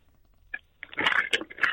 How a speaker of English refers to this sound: I couldn't find a blindfold, so I've got a paper bag on my head.